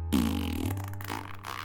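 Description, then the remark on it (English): A mouth imitates a wet fart: one drawn-out, sputtering buzz lasting over a second and a half, fairly loud, with no talking. “This was just the wet fart.”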